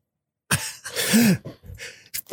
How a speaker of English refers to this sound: I'm going to sneeze.